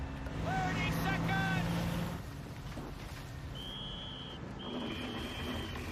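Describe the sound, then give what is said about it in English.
A boat motoring across water, with a steady engine rumble and wash throughout, a few brief whining tones early on and a thin high whistle near the end. “Boat ride was fine, and then a man behind us started yelling”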